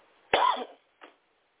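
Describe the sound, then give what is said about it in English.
A single sharp cough bursts out, followed a moment later by a shorter, softer cough or throat-clearing sound, with no talking around it. “Excuse me, y'all, I'm having a cough for some reason.”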